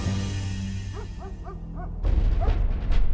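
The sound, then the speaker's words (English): A dog in a Cleveland neighborhood barks several times in a quick, evenly spaced series over a steady low rumble on a bitterly cold January morning in 1936, then one more bark rises through a louder burst of rushing noise. “On a bitterly cold morning in January 1936, a young woman in Cleveland was awakened by a barking dog.”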